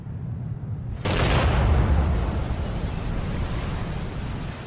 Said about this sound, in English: Then, all of a sudden, the roar of the explosion filled the air.